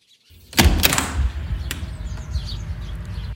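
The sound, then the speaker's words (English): A front door opens and shuts: a few sharp knocks and clunks of the latch and panel, then a steady low rumble of background noise. No one speaks. “front door.”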